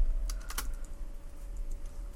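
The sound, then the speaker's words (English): A few quick computer keyboard clicks near the start, then light scattered tapping over a low steady hum, with no one speaking. “Yes, the sound of my typing appearing on my waveform.”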